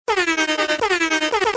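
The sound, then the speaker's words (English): A DJ air horn sound effect blares in rapid repeated bursts, loud and brassy with a bright, buzzing tone and a slight pitch dip at each restart, with no voices over it. “Insert DJ horns here. Can you insert DJ horns into this sound?”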